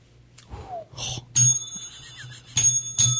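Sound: bell ringing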